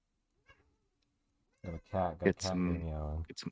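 A cat meows, a few loud, drawn-out meows following a brief quiet stretch.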